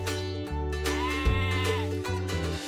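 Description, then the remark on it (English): Sheep bleat in a loud, overlapping chorus as they are pushed out of the pen into the field, several animals calling at once in wavering, nasal cries that carry on without pause. No one speaks. “So his job is to push the sheep out of the pen into the field.”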